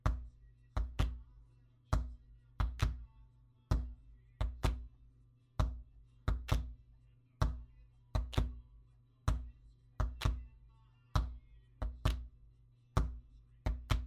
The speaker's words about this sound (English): I wanted some kind of percussion in it for one part, so I made a kick drum sound of sorts by smacking myself in the chest with my fist, and hand clap sounds by slapping my legs.